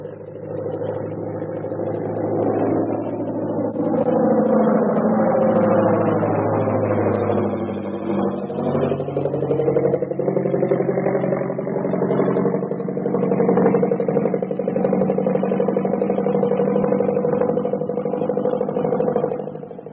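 Airplane engines drone loudly and steadily for the whole stretch, their rumbling tone sliding and wavering in pitch as the aircraft comes in at an airport. No voices are heard.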